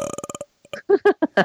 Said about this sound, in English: burps really loud, or B, puts his rear end next to the microphone and just farts.